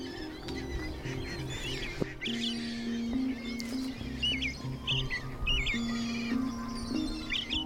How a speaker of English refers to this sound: And if you're ever along for a stroll along the Boise Greenbelt, listen for this crackling call of a belted kingfisher.